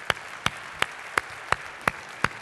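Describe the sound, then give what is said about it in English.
An audience claps hands together in praise of Jesus in steady unison, seven sharp, evenly spaced claps at a brisk beat with a faint background hum between them and no talking. “Can we give Jesus a hand clap of praise tonight?”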